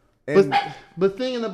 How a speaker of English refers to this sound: Thinking about it some more. Don't mind, King's barking. We'll figure it out.